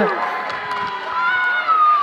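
A family cheering section at a game show-style event shouts and cheers together in a loud, steady burst lasting about two seconds, with overlapping pitched yells and no clear individual words.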